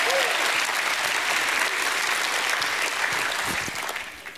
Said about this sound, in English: Give God a great hand clap and a shout of praise.